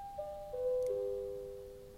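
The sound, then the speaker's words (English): A bell chimes a short descending run of three or four clear, ringing tones, each note sustaining and overlapping the next as they fade, with no voices over it. “Sorry, that's the bell.”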